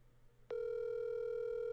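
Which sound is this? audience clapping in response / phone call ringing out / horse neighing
phone call ringing out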